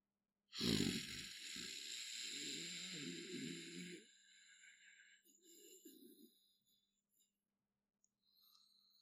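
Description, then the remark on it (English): A man lets out a low, deep, guttural growl while looking into the forest, fairly loud, lasting a few seconds, followed by a shorter, quieter rumbling growl after a brief pause. “He's looking into the forest and he just is growling this low, deep, guttural growl.”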